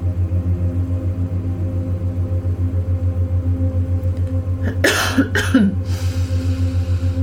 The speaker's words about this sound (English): That released a cough in me.